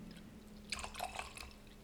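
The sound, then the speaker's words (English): Knob Creek bourbon is poured from a bottle, a short gurgling trickle lasting under a second against a quiet, low hum, with no one speaking. “Now, I've got a bottle of Knob Creek, and we're going to see if I can do a little ASMR here.”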